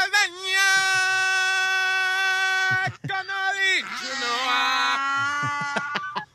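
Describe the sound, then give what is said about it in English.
A donkey brays along with its owner singing a song from The Lion King. Two long, loud, drawn-out notes are held, the second one swooping down in pitch before settling. “all I know is I hear that noise in the background of the donkey.”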